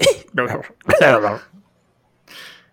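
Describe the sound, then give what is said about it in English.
A voice acts out a string of loud, croaky hacking coughs in three quick bursts, followed after a pause by a softer, breathy hack. “Wait, did you just cough up gold pieces?”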